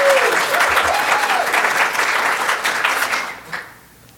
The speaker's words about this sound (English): Expected more clap. Come on. There we go.